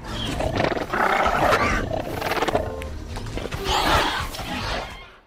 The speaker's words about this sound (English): Ultimately, what we ended up using were mostly penguins, Gentoo penguins. They do this sort of chuttering and these softer, cuter sounds that we were able to manipulate and make the raptors more friendly.